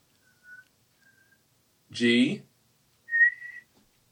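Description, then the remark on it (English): A person whistles a short four-note melody (G, B flat, A, D): two faint, brief notes, a burst of voice, then a louder, steadier whistled note held for about half a second. “the four-note melody that Katniss whistles”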